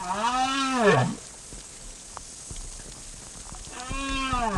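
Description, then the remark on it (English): Southern right whale calls underwater, recorded by Professor Clark off the coast of Argentina: two deep, drawn-out moaning calls with rising and falling pitch, separated by a few seconds of faint hissing background. “For over two decades, Professor Clark has been studying the acoustics of the ocean, including the songs of large whales, like these southern right whales he recorded off the coast of Argentina.”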